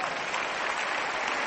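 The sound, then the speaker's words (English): A crowd claps steadily, a dense wash of many hands with no pauses, bright and fairly loud throughout and with no voices over it. “If you got a point, you'll be clapping better, I tell you.”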